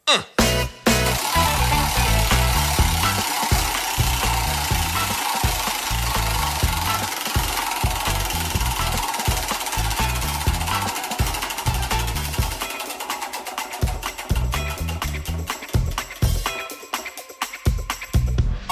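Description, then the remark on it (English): A prize wheel of challenges spins with a loud, rapid stream of ratcheting clicks that gradually slow and spread apart toward the end as it winds down. “Now I get to spin the narrator man's wheel of challenges.”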